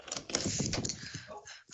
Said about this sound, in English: Why are you knocking on shit? I didn't knock on anything. You knocked on shit. No. Nope. It was three big ass knocks because you're right behind the wall.